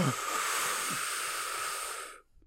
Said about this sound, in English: Hello. Hello. Hello. You hear me breathing?